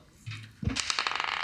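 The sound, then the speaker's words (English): Dice are rolled in a straight dice roll during a tabletop game: a soft thump as they land, then a quick run of bright clicking rattles that tumble for about a second before settling. No one speaks. “I need to do a straight dice roll.”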